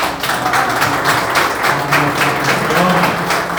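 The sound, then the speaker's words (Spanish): A crowd applauds boxer Amanda Serrano steadily, a dense wash of many hands clapping at once with no break for the whole stretch, fairly loud and even throughout. “Pero en 7 divisiones, la única en el boxeo, machos o mujeres, hombres o mujeres, como quiera llamarlo, Amanda Serrano, un aplauso grande.”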